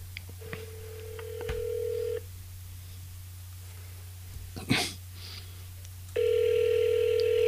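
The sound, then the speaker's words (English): A phone call ringing out through the line: two long, steady ring tones separated by a quiet pause, with a brief click between them and a low hum underneath throughout. “So, I am going to dial up someone here.”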